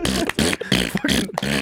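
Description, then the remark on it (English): A voice loudly imitates a fart, like a Tesla car horn set to fart instead of honk, blowing about five sputtering, buzzy bursts in quick rhythmic succession with no words spoken. “People trying to honk, but they forgot to change it back from a fart.”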